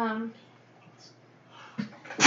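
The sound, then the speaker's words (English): A voice trails off into a quiet pause, then a brief breathy catch is followed by one loud, sharp, hissing sneeze at the very end. “Bless you.”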